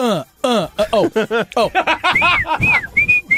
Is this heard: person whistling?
yes